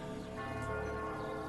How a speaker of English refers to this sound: It is cool how all the bells are ringing from the Septabella.